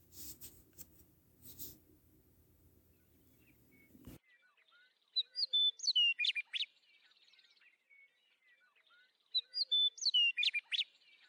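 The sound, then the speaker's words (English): After a few seconds of low rumbling noise, a songbird sings two clear bursts of bright, warbling chirps and whistles, each phrase several seconds long, fairly loud with quiet gaps between. “No matter how chaotic human life becomes, there is always time to pause for birds.”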